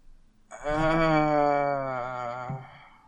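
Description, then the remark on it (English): A person's voice imitates a bald eagle call, trying for an accurate one by pretending to be a seagull, with one long, wavering, nasal cry that holds a fairly steady pitch for over two seconds, loud and alone, then cuts off. “Can you do an eagle call for us”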